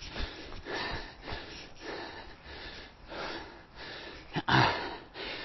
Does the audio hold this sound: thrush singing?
no